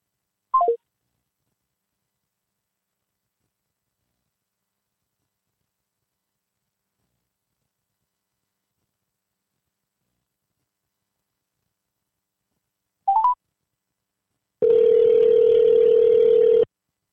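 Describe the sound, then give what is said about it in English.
A brief electronic phone beep, a long silence, then another short beep followed by a steady, loud dial tone lasting a couple of seconds, like a dropped call and a redial on a telephone line with a spotty connection. “Spotty connection. I'm glad we did the phone instead of the internet, because if the phone's doing this, I can't imagine what the internet would be doing.”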